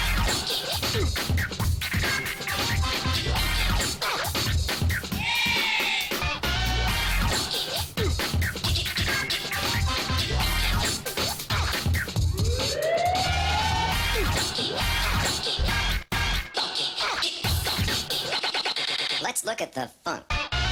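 A loud, busy funk-style video game track with a driving beat, turntable-like scratches and rising siren-like sweeps, plus chopped vocal snippets throughout, ending abruptly after about twenty seconds.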